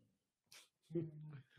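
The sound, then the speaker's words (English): A female dog named Lonnie vocalizes with a sustained, tonal whine-like sound lasting about half a second, preceded by a short breathy hiss. It is moderately loud, with no clear talking. “Dude, your dog's amazing.”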